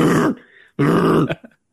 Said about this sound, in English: I can hear your dog. It's just here.